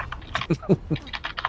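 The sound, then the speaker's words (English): Quick, uneven keystrokes clatter on a computer keyboard, a dozen or so crisp clicks in a short close-up burst with a few heavier thumps mixed in. “I was just typing.”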